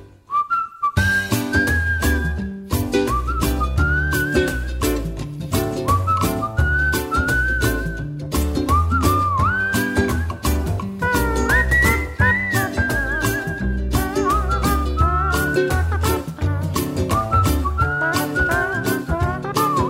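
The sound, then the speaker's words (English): A cheerful tune is whistled over a full, rhythmic band backing, the bright melody carrying clearly and continuously for the whole stretch with no one talking. “Everybody whistle.”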